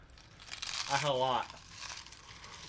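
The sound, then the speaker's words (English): Crisp, crackly crunching of salted egg chips being chewed, with a short wavering vocal sound like a murmur or laugh rising over it around the middle before the crunching continues more quietly. “It's gonna be crunchy.”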